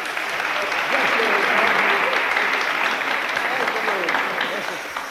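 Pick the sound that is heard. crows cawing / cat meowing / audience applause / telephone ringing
audience applause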